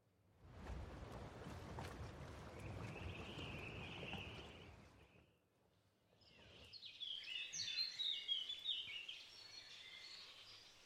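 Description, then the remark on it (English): A boat chugs along on the water with a steady low rumble and splashing for about five seconds, then fades; afterward, birds chirp and twitter brightly. “and we've got a boat”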